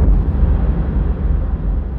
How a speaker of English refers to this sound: The rumble was the first signifier of change. A violent shake of the floor that could no way have been mistaken for the train cars rocking, followed quickly by the thunderous sound of a boom.